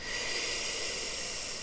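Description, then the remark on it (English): A steady, airy hiss of Sitali cooling breath drawn in through a rolled tongue, sustained for under two seconds with no talking. “There's also Sitali breath, which is a cooling breath that is done through a rolled tongue. All breath in and out through a rolled tongue.”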